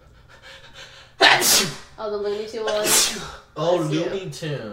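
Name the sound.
sneeze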